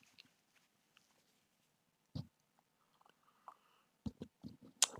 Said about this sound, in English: I need to have a sip of my Red Bull. Hold on for a second.